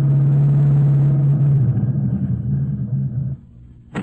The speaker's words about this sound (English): Let's imagine that shortly after midnight, the lead car drew up a short distance from the hideout.